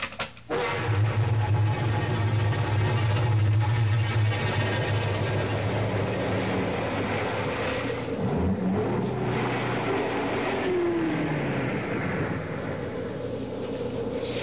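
A car drives along with a steady engine rumble and road noise, a low continuous hum holding at an even loudness throughout, with no voices.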